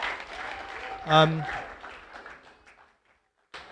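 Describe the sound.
A crowd claps together in a dense, steady patter that fades out over a few seconds, with a brief voice rising above it near the start, then silence before talking resumes.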